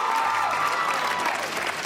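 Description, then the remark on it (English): A crowd applauds steadily, a dense wash of many hands clapping at a constant, fairly loud level for a couple of seconds, with no voices standing out above it. “Thank you for clapping, because it's hard to turn down a cameo, so I appreciate that.”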